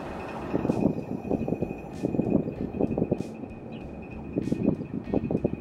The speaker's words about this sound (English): Also speaking from experience, on windy days, the suspension cable shake and make for a less than comfortable experience. Here's a clip from my trip to Omaha.